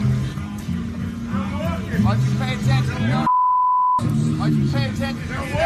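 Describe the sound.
A steady, high-pitched censor bleep cuts in for well under a second, covering bad language in heated talk between Tom Brady and Mike Vrabel on the practice field during Patriots–Titans joint practices, with voices continuing on either side.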